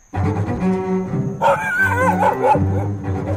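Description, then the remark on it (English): A big golden doodle named Brady barks and yelps in quick, whiny bursts at a dog park in Chevy Chase Village, Maryland, over a steady low droning tone in the background; no one speaks. “Brady's a big golden doodle.”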